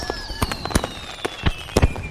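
Fireworks going off in a rapid, irregular string of sharp bangs and crackles, with high whistling tones sliding slowly downward underneath, fairly loud, with no voices.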